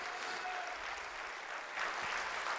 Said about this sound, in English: Give the Lord a clap of praise today.